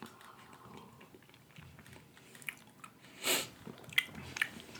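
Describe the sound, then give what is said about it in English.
Quiet chewing on sticky Finnish salty licorice candy, with soft wet mouth sounds, a brief louder smack, and a few sharp clicks near the end. Nobody talks. “So it's basically licorice, salt licorice, like I wonder what it does if you take a sip of coffee with it in your mouth.”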